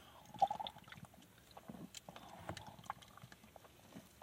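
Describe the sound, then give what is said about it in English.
Wet gulping and swallowing sounds as someone quickly downs a fizzy, bubbly drink, with small liquid squishes and a faint fizzy crackle, steady and unhurried over a few seconds with no talking. “I'm going to down this real quick.”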